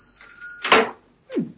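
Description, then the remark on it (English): The door of B. Bumble and Co., a honey shop, swings open with a short rasping creak, followed a moment later by a softer, lower scrape as it settles, with no voices. “Her lips twitched into a smile as she opened the door.”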